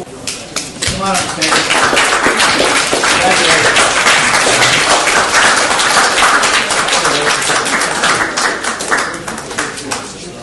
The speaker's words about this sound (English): That was Judge Alex Calabrese leading the courtroom in a round of applause for a defendant. Calabrese was congratulating the defendant for doing well in drug treatment, which he'd ordered her to participate in.